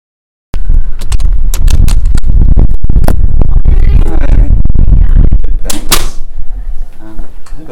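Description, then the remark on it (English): Loud knocking on the door of the Rabbit Patch preschool on Memorial Avenue, next to the airport in Christchurch, a quick run of sharp raps followed by clunks and rattling as the door is handled, with faint voices toward the end. “So I decided to go and knock on their door and see what they knew about the rabbits.”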